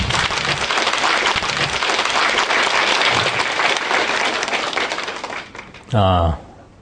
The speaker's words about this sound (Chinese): 下面我们以热烈的掌声欢迎索达吉堪布。